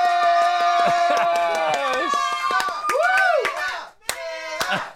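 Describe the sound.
Control room staff clap in quick, uneven bursts while voices cheer and whoop over it, the applause lively before briefly dropping out and picking back up.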